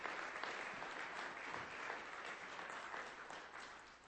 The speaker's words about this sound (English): Give God a hand clap of praise if you're looking good today.